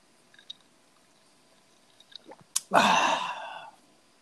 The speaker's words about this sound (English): Hold on a sec. Let me get my bearings. I'm going to take a sip of my drink.